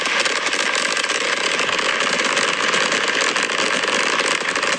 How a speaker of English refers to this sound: Here they come. Here come fireworks. Indoor fireworks. Oh, where did that? They're very fast. They're very fast indeed.